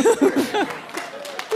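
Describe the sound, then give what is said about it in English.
A smattering of applause: a few scattered, light claps follow a short burst of chuckling laughter, thin and sparse rather than a full round. “Smattering of applause.”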